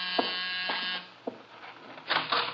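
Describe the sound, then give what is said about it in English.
A door buzzer gives a harsh, raspy electric drone for about a second, falls quiet briefly, then buzzes again in a shorter burst. No one speaks. “The door, Archie.”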